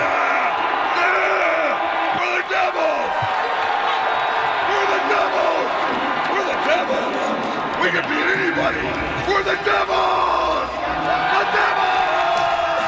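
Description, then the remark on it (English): A large hockey arena crowd at a New Jersey Devils playoff game against the Lightning roars continuously, with cheering, whoops and shouted voices blending into a loud, dense wall of sound, plus occasional sharp thuds from the venue. “He even had a big old D painted on his chest after he took off the Devil's sweater, pumping up the crowd before the game.”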